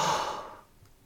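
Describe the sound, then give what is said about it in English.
A single long breath pushed out through the mouth during a guided breathing exercise, an airy whoosh that starts strong and fades over about half a second, with no talking. “Breathing in through your nose and out through your mouth.”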